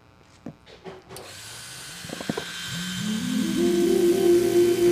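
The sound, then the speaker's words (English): A few soft clicks and taps, then a Hitachi Magic Wand vibrator switches on with a steady electric buzz that rises in pitch as it spins up and settles into a loud, even hum. “And then the Hitachi magic wand one. My hand hovered over the on switch. Low, medium, or high.”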